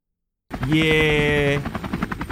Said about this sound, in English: Where are you right now? Oh, yeah, I'm up in the sky. It sounds like you're in a helicopter.